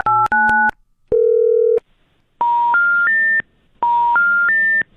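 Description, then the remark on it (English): A phone number shared online as a line to call the Grinch is dialed: a couple of quick touch-tone dialing beeps and a short steady tone, then the rising three-note intercept tone of a disconnected number, played twice, loud and clear with no voices. “We're going to drop that call. Anyone know what that means? I guess that number isn't working.”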